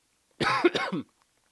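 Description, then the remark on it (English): A short burst of coughing from a person with a lingering cough, two or three quick harsh coughs running together over about half a second, fairly loud against a quiet background. “Sorry, I have a little bit of a cough still.”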